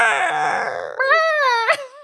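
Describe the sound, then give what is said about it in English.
A voice imitates a red-tailed hawk's screech, the call used in place of an eagle's cry: a drawn-out, wailing cry that slides downward, then a second higher, wavering call ending in a sharp rising-falling squeal. “Eagles actually sound like way wimpy, but so they have to use like a red-tailed hawk's voice instead.”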